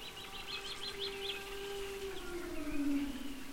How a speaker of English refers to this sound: I remain on my pile of moss, listening to the far-off calls of those amazing elephants.